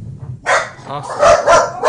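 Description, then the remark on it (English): Dogs scared by thunder bark in three sharp, loud bursts, the first longer and the last two quick in succession, with a faint low rumble underneath. “The thunder is now scaring my dogs.”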